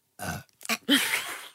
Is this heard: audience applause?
no